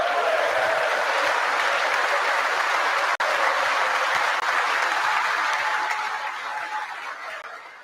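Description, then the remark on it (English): Sustained applause from a large audience after a statement that 3.5 million working-age people joined the workforce, a dense steady roar of clapping that holds for several seconds with a brief break, then gradually tapers off at the end. “Again, not one single Democrat clapping.”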